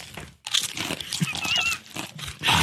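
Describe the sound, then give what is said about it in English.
Crisp crunching and crinkling sound effect imitating food being chewed, in dense bursts with a brief pause near the start and a few faint squeaky tones mixed in. “That's not me chewing, though. That's a sound effect.”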